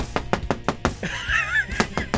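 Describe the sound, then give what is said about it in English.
A quick run of five firm knocks on a bathroom door, a brief warbling, squeaky tone, then two more knocks; fairly loud, with no talking. “are you gonna come out soon?”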